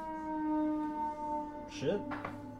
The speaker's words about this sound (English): Air raid sirens? What's going on? Chicago is under attack.